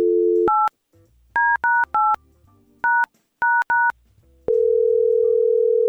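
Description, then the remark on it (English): A telephone dial tone gives way to about seven touch-tone dialing beeps in short clusters as a call is placed, then a steady electronic tone holds to the end, loud, with no voices. “we're going to call Greg and try to find out what that was”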